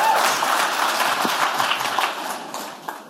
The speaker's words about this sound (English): Clap that up, that's the real shit.